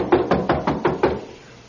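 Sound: knocking on a door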